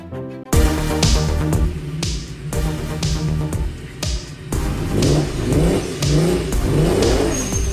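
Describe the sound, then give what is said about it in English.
A boosted NSX engine revs hard several times in a row, each surge climbing in pitch before dropping back, loud with a steady rumble between blips and no voices. “those car sounds, courtesy of Josh Maldonado, a boosted NSX, a fitting car sound”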